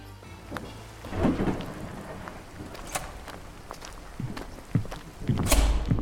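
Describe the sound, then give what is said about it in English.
Steady rain hisses throughout at night, dotted with sharp drips and taps, and a deep rumble of thunder swells near the end. No one speaks. “Angry words on a rainy night.”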